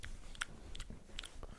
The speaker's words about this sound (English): All we're going to hear now is... maybe I won't. It's called Carl's Krone. Yeah, tell me what it's like. Yeah, that's it. Just gulp louder, please.